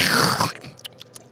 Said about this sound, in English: Well, meanwhile, while we're talking, I'm just going to slurp my coffee.